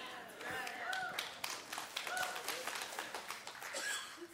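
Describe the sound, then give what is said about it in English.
An audience claps in a steady, scattered patter of sharp hand claps, with a few voices calling out over it. The applause holds at a moderate level throughout. “It was better than your clap.”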